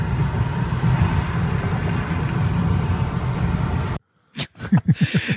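A car drives along the road with a steady, loud low rumble of engine and road noise for about four seconds, then it cuts out and a short burst of voice follows.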